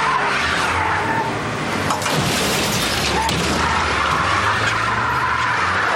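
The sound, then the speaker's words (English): Tires screech loudly over a roaring engine, with a heavy crunching impact partway through as a car comes up from behind and rams a Jeep, then continued skidding and engine noise, intense. “Well, it didn't last long because Roy Maloney, Nathan's father, comes screaming up behind and rams the Jeep a couple times.”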